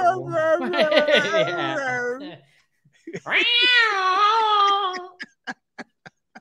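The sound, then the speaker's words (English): A human voice imitates two cats yowling at each other outside as they are about to fight: two long, wavering, drawn-out caterwauls, one after the other, loud, followed by a quick series of sharp clicks. “if you two cats outside about to fight. Oh, you can just hear it.”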